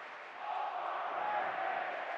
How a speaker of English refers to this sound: Crowd chanting overrated to Paul George.